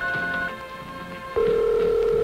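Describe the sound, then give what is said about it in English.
A telephone dial tone on a newly installed phone line at a customer's house, a steady, unbroken electronic hum that starts abruptly partway through and holds loud to the end, after a quieter stretch of faint tonal sounds. “Take that house there, and that wire, designed to last a lifetime, and that dial tone.”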